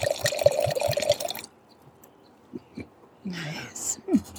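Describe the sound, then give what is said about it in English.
Wine, a 2019 Gabrielle Ashley Cabernet Sauvignon from Grocery Outlet, pours into a glass in a dense, bubbly gurgle with quick glugging pulses for about a second and a half, then goes quiet before a person briefly speaks. “It's wine time.”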